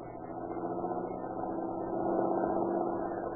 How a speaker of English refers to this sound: Say, here comes a car that looks like the boys Katzenberger's looking for. I think I'll stop them.